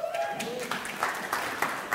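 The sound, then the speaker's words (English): A church audience applauds a worship leader coming up to share his playlist, with steady, dense clapping that holds at an even level for about two seconds, with a faint voice audible briefly at the start. “So can we give him a clap, please?”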